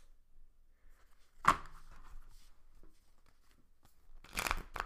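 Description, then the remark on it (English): A deck of tarot cards is shuffled for a tarot reading: a sharp papery burst early on, quiet handling, then a longer crisp riffle near the end. No one speaks. “Ooh, get that shuffle in there.”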